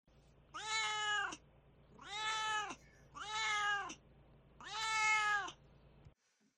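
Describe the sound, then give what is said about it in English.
A cat named Duarte meows four times in a steady series, each call drawn out and whiny with a rising then falling pitch, loud, with no talking, then it stops abruptly. “All right, now it's time for Duarte's Corner, where my precious angel Duarte will share his opinions.”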